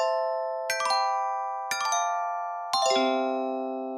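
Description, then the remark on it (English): Three bright chime strikes about a second apart, each ringing with sustained metallic tones that linger and overlap; the final strike lands lower and rings longest. Clear, with no talking. “Well, in situations like this, I find the best thing to do is play a chime and then talk about something else.”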